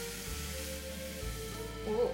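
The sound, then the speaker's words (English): Crepe batter sizzles in a hot pan, a steady hiss that holds through the whole moment, with low rumbling underneath and a faint voice briefly near the end. “Was a good sizzle.”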